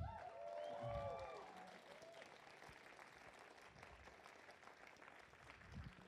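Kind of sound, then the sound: crowd, applause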